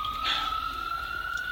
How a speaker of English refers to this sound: Hear the sirens? Hear the fucking sirens?